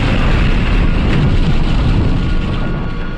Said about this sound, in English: The Jupiter's rockets aren't the only fireworks, though, because just as they gain some altitude, the surface of Preplanus starts to erupt with violent explosions of flames, smoke, and debris.